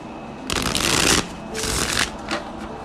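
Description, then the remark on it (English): A deck of tarot cards is shuffled before a reading in two rustling, riffling bursts of about half a second each, followed by a brief softer flick, with no talking. “So, I've shuffled the hell out of my cards.”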